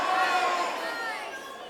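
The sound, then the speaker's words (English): An audience shouts out their guesses of the most popular emoji all at once on a count of three, a dense jumble of overlapping voices with no single word standing out, loud at first and tapering off slightly over a couple of seconds. “On three, just yell out whatever you think the most popular emoji is, okay?”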